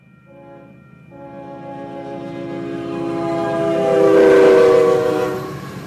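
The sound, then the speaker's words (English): A train horn blares in a long, steady chord over the low rumble of a departing train heading westbound to San Francisco in late February, swelling louder toward the end before easing off slightly. No one speaks. “We left by train in late February, westbound to San Francisco.”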